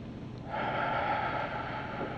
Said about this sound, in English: Take a deep breath. Let it go. This is the most expensive, most convenient stress buster that I know of. Deep breathing. Take a deep breath.